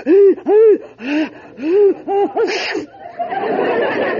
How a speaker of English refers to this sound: Bless you.